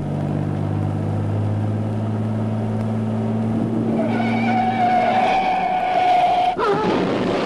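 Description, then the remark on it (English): A T-bird car engine rumbles and revs up, then tires squeal in a long, loud skid as the vehicle peels away, ending in a sharp screech; the car's brakes need adjusting. “Careful with the T-bird. The brakes need adjusting.”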